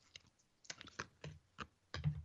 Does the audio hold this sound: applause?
no